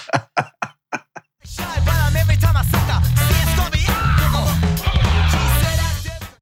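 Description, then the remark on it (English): A raw, strained vocal scream rises over a loud rock band with heavy bass and drums, following a few sharp percussive hits at the start. “I do like that that scream as well.”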